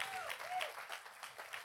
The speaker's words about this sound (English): Come on, give God a hand clap if you believe that.